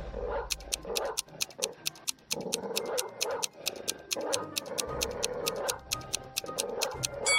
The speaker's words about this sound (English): And on the ground right above her head, there was an angry dog with sharp teeth.